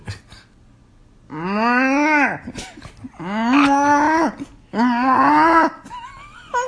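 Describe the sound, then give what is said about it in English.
A woman imitates a cow, giving three drawn-out, loud mooing calls, each lasting about a second with brief pauses between them. “Okay, what animal do you want to hear? I don't know. Okay, you want to start with a cow?”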